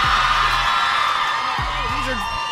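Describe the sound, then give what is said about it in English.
A large crowd at the beach whoops and cheers continuously on a morning, a dense wash of voices with a few rising shouts standing out, heard over a low rumbling background. “So we have a crowd here.”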